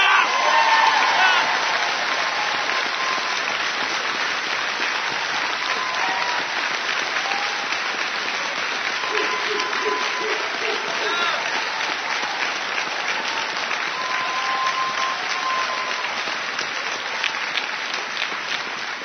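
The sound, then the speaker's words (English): Sustained audience applause for a Sergeant Major, a dense steady crackle of many hands clapping at even loudness for about nineteen seconds, with faint cheering and a few whoops mixed in. “Sergeant Major, that round of applause is both for your service to ACB and your service to this country.”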